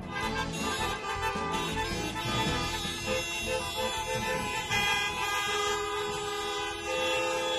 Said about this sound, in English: It's a line of cars snaking around, and people are just... they're just honking up a storm for absolutely no reason. No one's moving. No donuts are being given.